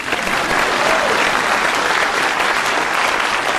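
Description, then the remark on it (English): A burst of steady audience applause, dense and fairly loud, with many hands clapping continuously for a few seconds without any speech over it. “Please clap.”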